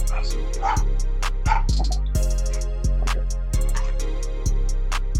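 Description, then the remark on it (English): A dog barks excitedly as a family member arrives home, in a string of sharp, loud yelps about once a second, over a steady low droning background. “My my stepson just got home, so the dog's screaming.”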